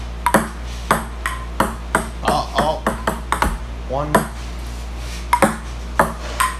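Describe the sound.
A ping pong rally: sharp, bright ball clicks bouncing back and forth at an irregular quick pace, with brief pauses, while a voice speaks occasionally in between.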